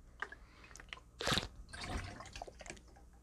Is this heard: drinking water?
yes